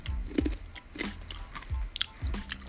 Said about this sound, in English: Chewing on a crispy pancake right now.